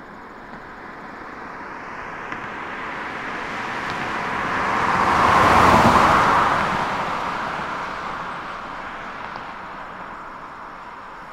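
car passing by

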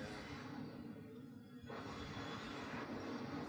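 train on railway tracks

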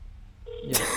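phone call dialing out

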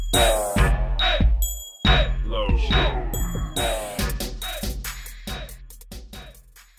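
bell ringing

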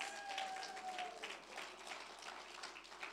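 audience applause

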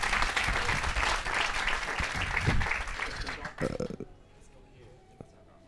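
audience applause welcoming speaker

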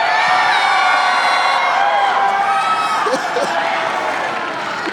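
audience yelling and cheering

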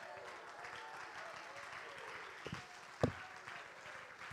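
light polite golf clap

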